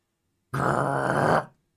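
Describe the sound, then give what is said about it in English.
A single deep, rough monster-like growl from a huge Pomeranian dog beast, loud and sustained for about a second, with a gritty rumbling texture and no other sounds around it. “Oh no, you know that growl. It's the huge Pomeranian dog beast.”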